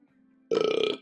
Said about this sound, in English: Excuse me, I'm belching.